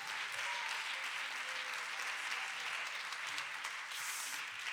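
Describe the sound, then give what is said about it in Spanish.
A church audience applauds God steadily, a dense, even wash of many hands clapping at once that holds at full strength for several seconds, with no voices rising above it. “Dele fuerte aplauso al Rey con el corazón.”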